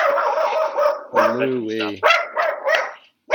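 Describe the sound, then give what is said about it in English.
A dog lets out a short run of loud, sharp barks, three or four in quick succession, barking out a window at another dog, with people talking around them. “He's barking out the window.”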